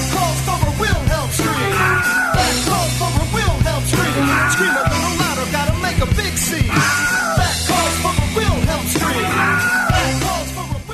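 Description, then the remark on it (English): A Wilhelm scream, the familiar stock yell, sounds again and again in loud, overlapping bursts roughly every couple of seconds, layered over a dense, droning backdrop that never lets up. “That calls for a Wilhelm scream.”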